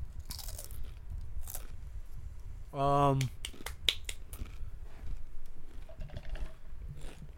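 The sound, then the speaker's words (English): Someone crunches on potato chips, making a run of irregular, crisp crackling bites and chews, with a short hummed vocal murmur breaking in partway through. “Goddamn fucking chips is good, man. They're fucking fire.”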